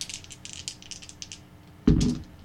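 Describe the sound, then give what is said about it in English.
Two dice rattle in a quick series of light, clicky bursts, then land with a solid thud on a table and clatter briefly to a stop, both showing ones. Fairly loud, with no voices. “Both ones. Oh, snake eyes.”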